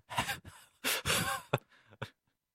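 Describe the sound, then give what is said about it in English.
A man breathes heavily and raggedly with a series of sharp gasps, about half a dozen noisy bursts in quick uneven succession, fairly loud, with no talking. “he's breathing he's really doing a strange heavily. Series of gasping he's sounds.”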